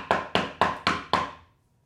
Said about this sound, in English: And at this point, we hear a knock on the door.